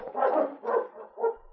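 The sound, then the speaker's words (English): Sled dogs waiting to be fed bark in three quick bursts, the yelps mixed with a whiny, whimpering edge, moderately loud with no talking. “All right, quiet down. Take it easy, you'll all get fed.”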